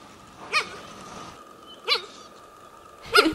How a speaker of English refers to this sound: She's really interested in these cheetah noises.